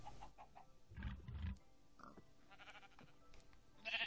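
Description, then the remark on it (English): A couple of short, nasal sheep bleats from a video game, mixed with scattered clicks and soft rustling game noises, with no one talking. “Come on, sheep. Come up.”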